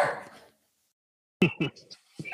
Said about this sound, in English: Is that a dog? Jenny didn't like that.